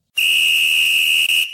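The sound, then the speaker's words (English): A single loud, shrill whistle blast held steady for over a second, piercing, cutting off abruptly with no voices around it; the whistle is blown to start a timed segment. “I'm going to hit the whistle, and I'll go first.”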